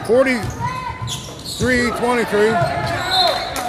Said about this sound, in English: Yeah, the ball slapped out of bounds.